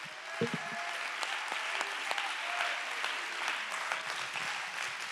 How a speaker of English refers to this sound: Oh, somebody clap your hands and give Jesus a praise.